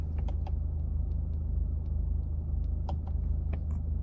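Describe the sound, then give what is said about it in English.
The engine of a newly acquired diesel car idles with a steady, low rumbling drone and occasional sharp clattery ticks. It runs continuously at an even level, with no one speaking. “Welcome, new family member. The diesel guy.”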